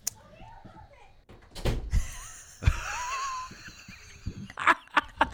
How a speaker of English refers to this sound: Close the door. Okay.